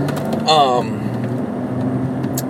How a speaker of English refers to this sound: Sorry, traffic, these assholes.